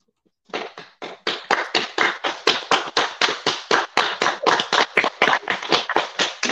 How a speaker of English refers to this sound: That's real claps, people. That's not automatic. That's real people. Thank you. That's real people. We got some real people up in here. Real people. That's not no automation. This real people clapping.